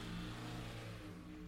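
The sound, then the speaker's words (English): A pickup truck engine revs loudly and steadily with a low harmonic drone, then eases off slightly as the truck speeds away down a street at night. No voices are heard. “His partner sped away down the street.”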